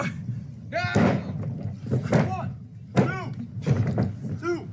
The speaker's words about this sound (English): In most backyards, you might hear the chirping of birds or the whir of a lawnmower, but here in a Kamloops, BC backyard, you're more likely to hear the sound of body slams or suplexes.